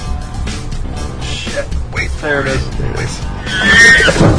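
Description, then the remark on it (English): Loud, shrill monkey screeching in a few wavering harmonic bursts, growing more intense toward the end, over a busy, noisy background. “Shut up, monkey!”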